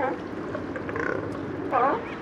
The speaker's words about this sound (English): These noisy mammals are California sea lions. Producer Mark Seth Lender made this recording at a floating pier outside Elkhorn Slough in Monterey Bay. It's an area the sea lions called their own for thousands of years before people drove them away.